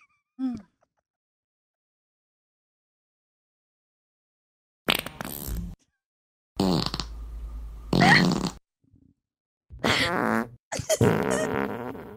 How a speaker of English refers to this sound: I mean, Randy's playing every fart sound there is.